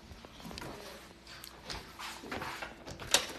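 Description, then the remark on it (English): A front door being opened, with soft rattling and shuffling handling noises building to a sharp latch click near the end. No one speaks. “I gotta walk out the front door just to see.”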